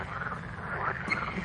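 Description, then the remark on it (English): A dense chorus of frogs croaking steadily, many overlapping calls forming a continuous pulsing drone at moderate volume, with no voices present. “What is it? Frogs.”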